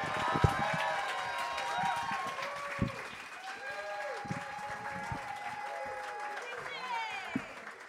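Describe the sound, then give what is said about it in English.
An audience welcoming a performer to the stage applauds steadily throughout, dense clapping mixed with cheers and a few rising whistles, holding at a fairly even loudness for the whole stretch. “So when I say their name, so can you please start your hands clapping and please welcome to stage”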